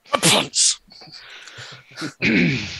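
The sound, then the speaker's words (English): A loud sneeze bursts out with a voiced 'ah' and a hissing 'choo', followed by softer breathy sounds and then a stretch of voiced noise. “I couldn't hear you from down there. Gesundheit.”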